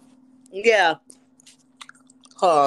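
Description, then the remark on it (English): A woman crunching ice between her teeth gives a few short, crisp crackles. Brief voiced sounds come at the start and end, and a steady low hum runs underneath. “I'm crunching on ice.”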